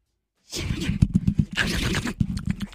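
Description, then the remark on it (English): A person vocally imitates a raccoon eating a peanut butter and jelly sandwich it just found in the trash, with loud, excited chattering and snuffling noises in rapid, uneven bursts, starting after a brief moment of silence. “A raccoon that just found a peanut butter and jelly sandwich in the trash.”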